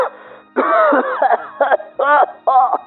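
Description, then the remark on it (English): A loud, wheezing cough that sounds like asthma comes in several harsh bursts, each with a strained, whistling rasp as breath is dragged in between fits. No one speaks. “What it sounds like is asthma.”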